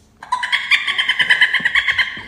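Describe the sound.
A person voices a high, shrill dolphin-like squeal, a rapid pulsing chatter of tones held for about two seconds, loud with no other sounds.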